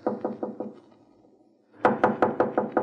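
Knocking on a door in two bursts: a quick series of about four raps, a short pause, then six louder, evenly spaced knocks. No voices are heard.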